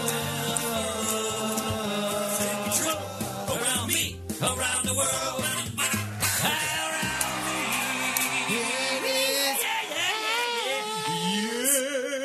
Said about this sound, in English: He's the only one that has a built-in applause into his introduction.